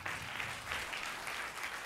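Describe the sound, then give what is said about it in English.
A crowd applauds steadily, many hands clapping in a dense, even wash of sound that holds at a fairly strong level throughout, with no voices heard. The audience is welcoming the Dean of the College of Christian Ministries and Religion at Southeastern University to the platform. “Would you clap your hands and welcome to the platform, Dr.”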